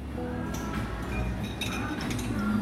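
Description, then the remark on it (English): A few light clinks of glasses used for trying beer samples ring out, scattered over a couple of seconds against a busy background hum, with faint voices murmuring in the background. “This glass is for try.”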